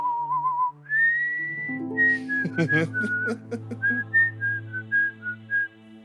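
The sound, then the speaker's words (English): A hamster whistles a sweet, lilting melody, clear tones gliding and stepping between notes, with soft musical accompaniment humming underneath. “He's just whistling a really pretty tune.”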